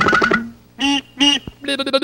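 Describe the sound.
Two short, nasal, horn-like "meep meep" calls of a cartoon roadrunner ring out loud, framed by rapid stuttering quacky bursts at the start and end.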